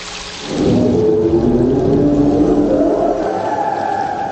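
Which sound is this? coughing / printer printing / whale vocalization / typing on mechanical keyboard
whale vocalization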